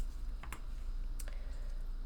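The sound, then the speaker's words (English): A few soft, scattered keyboard taps click, two quick pairs separated by a pause, over a low steady hum with no one speaking. “For some reason, I was typing Christina.”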